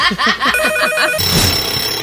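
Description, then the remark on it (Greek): A telephone ringing tone sounds on an outgoing call, steady electronic tones over brief murmuring voices and background clatter, moderately loud throughout. “Έχω ένα τηλέφωνο. Θέλω να το κάνεις όλο δικό σου.”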